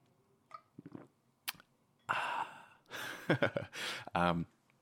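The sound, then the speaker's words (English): Someone takes a few airy, slurping sips of coffee from a cup, with short pauses between them, then lets out a soft, satisfied breathy sigh. “I've literally got my coffee right here. Let me just take a sip.”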